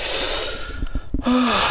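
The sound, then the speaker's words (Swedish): Shaky, breathy crying with a few sharp sniffles and gasping intakes of breath, ending in a brief wavering voiced whimper. No words are spoken. “Ja, nu gråter jag.”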